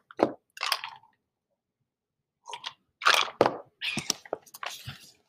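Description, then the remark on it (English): Someone takes a few sips of water, with short wet mouth noises and gulps in separate bursts, a pause in between, and no talking. “Sorry, I kind of have like a sore throat, so I got some water.”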